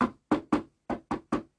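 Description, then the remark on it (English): Knocking on a door: two quick sets of three firm raps with a short pause between them, clear, with no voices. “Then a knock came at the door.”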